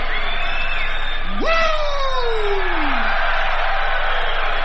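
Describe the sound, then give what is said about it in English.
A wrestling crowd in Savannah roars and cheers steadily to welcome Ric Flair, with one loud whooping yell that rises sharply and then slides down in pitch over a couple of seconds. “And listen to this crowd welcome you.”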